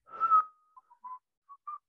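A person who has just learned to whistle whistles a short, tentative tune: one breathy, wavering note followed by a few brief, thin chirps at a similar pitch, with no talking.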